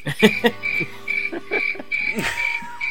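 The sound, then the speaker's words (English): Crickets chirp in a steady, pulsing trill that repeats every fraction of a second, moderately loud, with a few lower throaty calls mixed into the nighttime background. “Wow, those crickets took the words right out of my mouth.”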